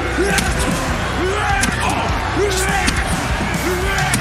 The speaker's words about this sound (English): That sound of Jungle Boy's skull bouncing off those chairs is brutal. Sickening.